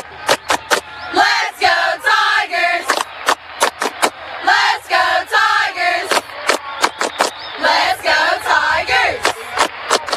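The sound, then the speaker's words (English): The Childersburg High School Cheerleaders shout rhythmic chant lines in unison in a pregame show, girls' voices punctuated by sharp, regular claps or stomps, loud and energetic throughout. “It's time to pump it up with the Childersburg High School Cheerleaders, presented by Allen Brew Markets.”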